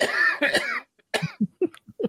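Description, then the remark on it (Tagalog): A loud cough with a couple of harsh bursts, followed after a short pause by several smaller throat-clearing coughs in quick, uneven succession. “Ubo ko?”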